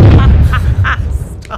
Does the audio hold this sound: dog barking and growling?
no